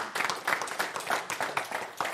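Scattered hand claps from a small audience, uneven and loosely timed, a few people clapping at moderate volume with no one speaking over them.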